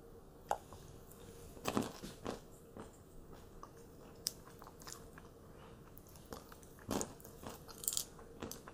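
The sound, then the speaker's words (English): Crunchy pistachios being bitten and chewed, with irregular sharp cracks and crackles spread over several seconds against a soft, steady background hiss. Nobody speaks. “And let's have some pistachios.”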